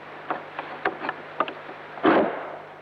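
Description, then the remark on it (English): An old bolt on a curtained door at Borley Church slides back: a string of small, irregular metallic clicks and knocks, then one louder grinding scrape-and-clunk that fades out slowly, with no squeak and no voices. “Now, can you try sliding that bolt back to see what sound it makes?”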